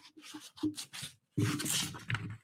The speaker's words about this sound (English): If I cut to those crop marks, I'm going to cut it real quick, rough, while we're sitting here, because it's just a test sheet I did.